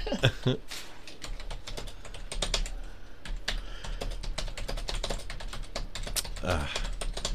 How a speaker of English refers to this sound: Did you hear this? He's typing awful aggressive. It's 2 weeks in a row